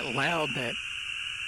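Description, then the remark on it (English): An American toad's long trill sounds as a steady, unbroken high-pitched buzz that holds throughout. A voice speaks briefly over it at the start, then the trill carries on alone. “That one long trill, that's an American toad.”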